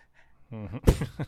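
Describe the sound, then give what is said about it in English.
A dog sneezes once, a sharp explosive burst, preceded by a brief voiced whine-like tone and followed by a couple of softer snuffling snorts. “I don't know, but he sneezes more than any other dog I've ever like seen in my life.”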